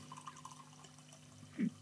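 Yorkshire biscuit-flavoured black tea pours from a teapot into a cup in a quiet, steady trickle, with a brief louder splash of liquid near the end. No one speaks.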